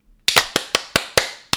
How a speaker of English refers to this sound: Let's do a hand clap. You ready? Mm-hmm. I can make your hands clap. One, two, 14. Three, clap.